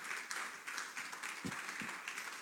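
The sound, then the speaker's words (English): A crowd applauds a woman steadily, a dense wash of many hands clapping at an even, sustained level for the whole stretch, with a few heavier claps standing out toward the end. “Clap for her again, please.”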